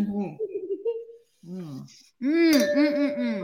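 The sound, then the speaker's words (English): A single bright clink of wine glasses rings out and lingers as a steady tone, half-buried under excited, cooing voices and laughter that carry on around it. “having a glass of wine. Right. That's right. It's not too early this time to have it, but cheers”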